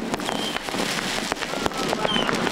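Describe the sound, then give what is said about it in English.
Dense, continuous crackling and popping of illegal fireworks from an unofficial neighborhood display in South Los Angeles, with sharp bangs scattered through a steady roar of small explosions and occasional whistling streaks, heard outdoors. “Smoky haze hanging over Southern California after a lot of people set off illegal fireworks.”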